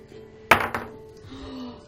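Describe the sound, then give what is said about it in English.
A die clatters onto a hard tabletop: one sharp knock followed quickly by a second, lighter clack, then it settles into quiet with only faint background hum. “Roll me this die.”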